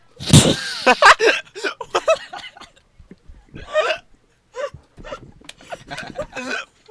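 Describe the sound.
A person imitates a pig's snort with a string of short, rough, nasal bursts, loudest at the start, then a pause and a few more grunting snorts with breathy, laugh-like gasps.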